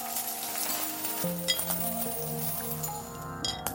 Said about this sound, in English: The sound he was hearing was from coins forming a pile on the worn carpet in front of the counter.